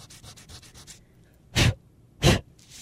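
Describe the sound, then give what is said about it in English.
A pencil eraser rubs quickly back and forth on paper, erasing graphite pencil marks from a drawing, in a rapid run of soft, scratchy strokes, followed by two louder, longer swipes and a faint trailing rub. “What happens when I rub that eraser over my drawing is that the eraser is rubbing those graphite marks right off the paper.”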